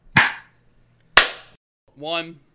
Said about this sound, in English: Are we clapping on 3 or clap after three? This is the question. So it's 1, 2, 3, clap.